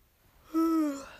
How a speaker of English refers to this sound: Sorry, yawning again.